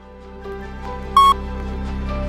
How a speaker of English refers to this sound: Okay, tell me I'm wrong after the beep, and here's the beep.